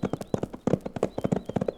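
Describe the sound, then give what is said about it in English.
A pony trots briskly at a lively, sustained clip on a ride about 40 or 50 miles from Dos Rios, its hooves striking in a quick, steady clip-clop rhythm, fairly loud, with no voices over it. “the O'Bannon was matching the rattle of the pony's hooves with the prattle pouring from his lips”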